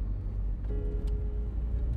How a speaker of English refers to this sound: So, after driving slowly into the garage, he stops his car, switches off the engine, and pushes open the door.